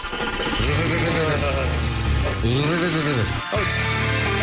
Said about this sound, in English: Can you just fire up the Tier 1 tour bus for a minute or two here?